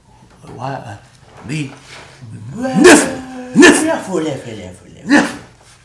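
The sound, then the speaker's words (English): A few sharp, loud sneezes from allergies burst out in quick succession, each a sudden explosive puff of breath, mixed in with people talking. “Bless you.”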